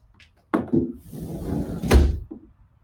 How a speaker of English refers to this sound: I'll close the door. Don't go away.